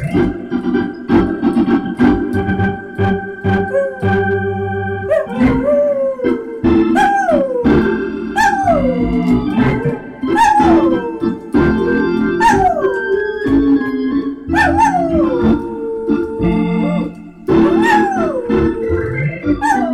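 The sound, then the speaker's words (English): A dog howls again and again, each long wavering cry sliding up and falling away, loud, over steady organ music played by Nancy Faust underneath. “Songs, but make sure we get the dog howling at some point.”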